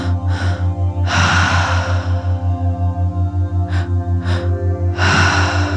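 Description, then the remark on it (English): Deep, audible breaths during breathwork come in a slow series of long inhales and exhales, clear, over a steady pulsing low drone with no talking. “It gets to be here and just breathing with it.”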